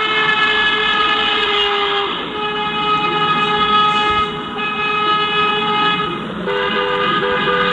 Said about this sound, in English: Ask not for whom the horn blows.